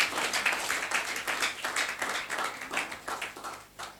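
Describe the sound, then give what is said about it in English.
An audience at a Sunday church service claps their hands together in a steady, dense patter of overlapping claps that holds for several seconds, bright and fairly even in loudness, with no voices over it. “Clapping your hands is a weapon. So when it is time to do it, do it.”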